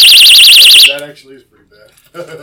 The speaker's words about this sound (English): This is an alarm. Yeah. We won't pull it because we're in the house. No, please pull it. I want to hear it over the show. Oh, that's not that bad.